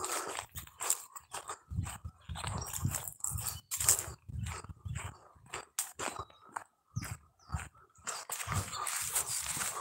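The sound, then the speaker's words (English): Dogs at houses along a daily walking route bark in a steady, irregular string of sharp, overlapping yelps and woofs. The barking is loud and continues for the whole stretch, with no one talking. “I'm hoping these dogs all get to know me, you know?”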